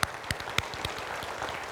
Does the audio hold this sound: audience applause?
yes